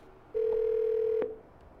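A single steady phone ringing tone from a call placed by a Team Gary V member sounds for just under a second, loud and clear over a faint line hiss, then cuts off abruptly. No one speaks.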